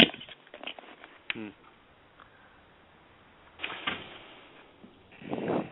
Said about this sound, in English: Okay, let me just close this door just a second.